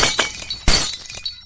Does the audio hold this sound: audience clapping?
no